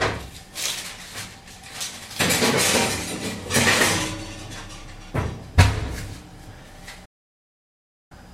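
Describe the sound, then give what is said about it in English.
A baking sheet lined with baking paper and holding a piece of fish scrapes and clatters as it slides onto the top oven shelf, with metallic rattling, then a sharp thud as the oven door shuts, followed by silence. “I'm just going to go on the top shelf of the oven.”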